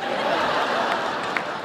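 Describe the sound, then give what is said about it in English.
An audience at a comedy performance claps in a steady, dense wash of noise that holds at an even level throughout, with faint chuckles mixed into the crowd sound. “You don't have to clap.”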